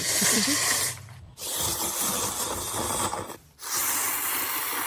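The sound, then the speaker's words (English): Loud, wet slurping of someone sucking up a bowl of noodles, in three long hissy breathy pulls separated by two brief pauses, with no talking. “Now this is this sound, is it someone slurping a bowl of noodles?”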